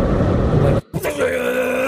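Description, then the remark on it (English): A person imitates a roaring Ferrari engine with their voice: a loud, gritty growl, a brief pause, then a rising, revving whine held steady. “I think there's no chance it's the Ferrari. Because you would have heard the Ferrari be like here.”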